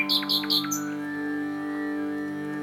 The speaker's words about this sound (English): Do you think they respond when you're singing with them, the nightingales? Yes, without question.